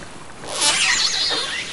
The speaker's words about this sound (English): Those are killer whales. They were recorded in April swimming by the hydrophone that the National Park Service has installed down at the bottom of Glacier Bay.